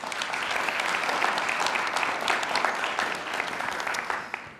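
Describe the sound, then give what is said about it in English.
A church crowd applauds the worship, a dense patter of many hands clapping at an even, sustained level for several seconds before easing off slightly at the end. “All right, let's give the worship another round of applause.”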